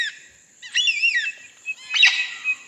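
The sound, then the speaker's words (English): Clear birdsong from threatened Australian birds: two bright, warbling whistled phrases with rising and falling notes, separated by a short pause, heard alone with no talking. “This album consists entirely of Australian bird songs.”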